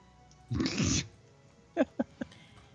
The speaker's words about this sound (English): My lovely cat, Simon. Meow. My other cat, Sophie. Meow.